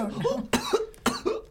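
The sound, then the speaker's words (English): Two harsh coughs about half a second apart, with strained, gagging vocal sounds between them, like someone choking and coughing up water. “You start choking, coughing.”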